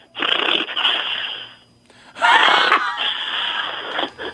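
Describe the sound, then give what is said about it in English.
A voice imitates a rattlesnake's rattle with two sustained, hissy buzzing bursts, each lasting over a second, separated by a short pause; the second burst starts louder. “Okay, first, I can do a rattlesnake and a finch.”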